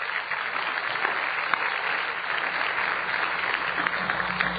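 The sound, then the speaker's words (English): A church crowd claps steadily for several seconds for the pastor and his wife celebrating 40 years of marriage, a dense, even wash of many hands with no pauses and no voices standing out above it. “Let's give it up for them.”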